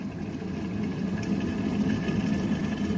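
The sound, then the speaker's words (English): An electric kettle rumbles as it heats water toward a boil to pour over nettles in a cup, a steady low roar with a faint whirring hum that holds evenly for a few seconds, with no voices. “Now, while the kettle's boiling”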